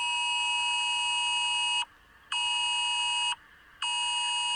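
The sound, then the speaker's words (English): A recording of a new government's early warning alert system: a loud, harsh electronic alert tone blares in three long bursts separated by short gaps, a steady harmonic buzz typical of an emergency warning signal, with no voices. “That was a recording yes. of the new government's early warning alert system.”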